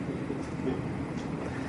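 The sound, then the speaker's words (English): A train, which usually comes at 12:30 but came early today, rumbles steadily, a continuous low, broad roar with no clear rise or fade and no voices over it. “And he sent us a train. It usually comes at 12:30.”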